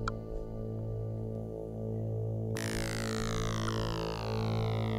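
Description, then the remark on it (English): Music played for quiz one: a steady instrumental tune of sustained, droning synth tones with a pulsing low end; about halfway through, a brighter, shimmering layer sweeps in on top. No one speaks. “I can hear some music. I can hear it. I can hear quiz one, to be precise.”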